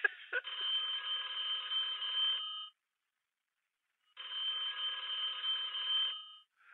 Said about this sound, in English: How the phone rang first, then after I already left the message, the ringing should have went before the phone. It's bad.